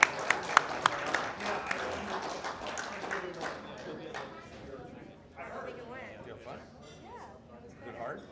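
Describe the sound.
A small audience claps steadily in a round of applause for a person, a brisk patter of hands that thins out over a few seconds and fades as people begin talking.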